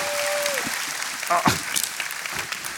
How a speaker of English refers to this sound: Ladies and gentlemen, clap your hands. Show your love.